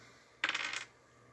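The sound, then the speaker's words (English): Dice tumble across a hard tabletop in a quick clatter of rapid clicks lasting under half a second, then stop, leaving only a faint low hum. “Whoop, I rolled the wrong dice.”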